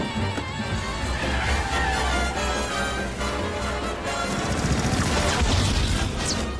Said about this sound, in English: It's 1920s car chase.